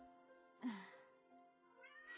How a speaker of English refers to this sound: The cats are contributing, apparently, because we're not talking enough.